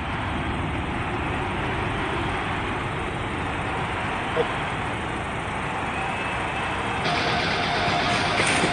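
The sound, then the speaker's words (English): A helicopter flies steadily, its dense, loud roar carrying a fast, low rotor chop that holds for the whole stretch and swells slightly toward the end. No voices. “Here comes a helicopter.”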